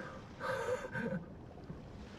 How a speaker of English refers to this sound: I can hear the ocean.